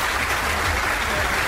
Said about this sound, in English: Wow, a standing ovation. Wow. That's not a standing ovation. Oh, wait. This is just a standing ovation. It sounds like rain. Yeah, a little bit.